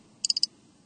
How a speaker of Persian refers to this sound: بشنوید. میزنه به شیشه آبجو.